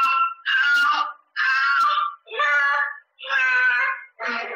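A toddler cries in repeated loud, high-pitched wails, about five or six sobbing bursts separated by short gasping pauses, with no other voices.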